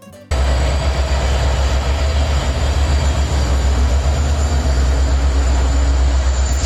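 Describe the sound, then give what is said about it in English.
A freight train on the rails, with cargo containers left busted open, rumbles along with a steady, heavy roar that starts abruptly and holds loud throughout, deep low rumble under a broad hiss. No one speaks. “Amazon packages, UPS boxes, unused COVID tests, phishing lures, EPI pens, cargo containers left busted open on the trains.”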